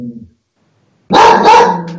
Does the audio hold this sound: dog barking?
yes